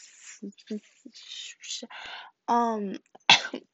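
A few short, breathy coughs and throat noises up close, including one drawn-out voiced, strained hack, then a sharper final burst, with no speech.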